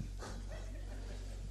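A single faint dog bark sounds far off near the start, followed by soft harmonic yips trailing away over a low, steady background hum.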